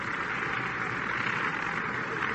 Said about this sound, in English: Yep. Antonelli getting a round of applause.